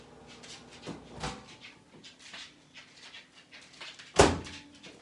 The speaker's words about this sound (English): All right, there's a dog in the background. The dog always makes noise when I film videos. Taking care of a friend's dog.